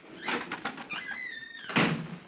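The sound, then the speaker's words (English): A door creaks open with a thin, rising squeal from its hinges, framed by soft clunks and a louder thump near the end as it swings wide. No voices. “Slip out as soon as I open this door. I'll lock it behind us.”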